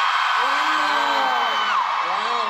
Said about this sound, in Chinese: 木木們，有想我們嗎？我想用熱烈的歡呼聲來。大家有多像我们？1、2、3，尖叫声！